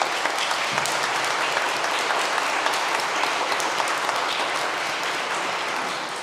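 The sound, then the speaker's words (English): A church audience claps steadily in appreciation of the choir, a dense, even wash of many hands sustained for several seconds with no voices, tapering slightly at the end. “And a lot of times we don't clap in church, but it is a way we show appreciation”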